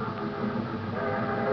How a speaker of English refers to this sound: The train, Charlie. I was just thinking about the train.